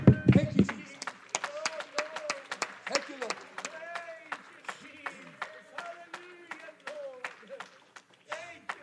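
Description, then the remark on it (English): An audience claps their hands in a brisk, uneven patter of many sharp claps, while voices call out and talk over the clapping throughout. “Come on, just do that just for a moment. Clap your hands.”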